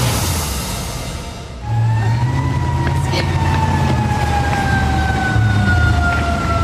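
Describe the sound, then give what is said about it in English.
An emergency alarm siren on the UNC Chapel Hill campus, sounded over a threat of a person with a gun, kicks in after a moment of rumbling noise, holding one loud, steady wailing tone that slowly slides lower in pitch over a constant low background drone. “It's the sound that strikes fear in the hearts of students and staff at UNC and their families at home. Another alarm sounded on the Chapel Hill campus today.”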